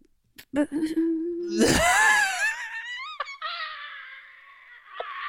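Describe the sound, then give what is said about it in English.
A woman imitates a phone going dead, in the accent of the character she was just doing: a short flat hum, then a rising strained whine that slides and wavers, breaking off with a click before trailing into a thinner, fading squeal. “Oh, so when she hasn't queued up a noise of a phone going dead, she tries to do the noise of the phone going dead.”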